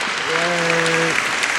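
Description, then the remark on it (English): A steady round of applause fills the whole clip at a fairly loud, even level, with a sustained low tonal note, like a held cheer, rising over it for about a second midway. “That round of applause is for all of y'all that's been listening, man.”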